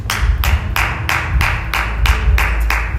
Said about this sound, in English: Bless me, that clap.